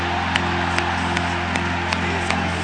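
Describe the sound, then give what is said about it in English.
A church crowd claps its hands to Jesus in a steady, even rhythm, roughly two claps per second, over a continuous hum of voices and low sustained tones. “Let's clap our hands to Jesus. Come on, while you're clapping, why don't you just shout the name of Jesus right now?”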